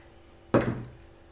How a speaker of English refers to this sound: God, I love hearing your dice. It's like proper metal dice, they're really good to see.